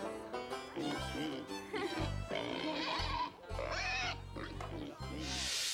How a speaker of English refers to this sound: That is one chubby pig.